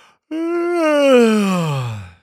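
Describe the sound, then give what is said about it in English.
A single drawn-out, exaggerated yawn, loud, starting with a sharp onset and sliding steadily downward in pitch into a low, groaning exhale over about two seconds. “Yawn.”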